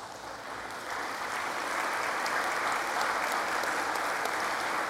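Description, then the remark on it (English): A church audience applauds Vacation Bible School workers standing in the worship service: a steady, dense wash of many hands clapping that swells slightly after the first second and holds an even, moderately loud level throughout, with no voices standing out. “Now, you probably should hold your applause till next week if they make it through the week, okay?”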